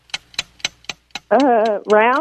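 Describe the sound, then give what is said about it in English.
A game timer clock, started for the first round of a word-guessing game, ticks five times in a steady, quick, crisp rhythm, then stops as a sustained, pitched voice takes over. “Start the clock now.”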